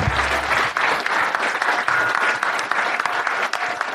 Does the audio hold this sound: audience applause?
yes